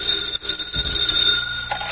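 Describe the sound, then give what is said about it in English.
A telephone rings in the evening at an FBI field office with a sustained, shrill, bell-like tone that holds steady for the full two seconds. No one speaks. “Later that evening, at the FBI field office for that area, Special Agent Jim Taylor is finishing a report when his phone rings.”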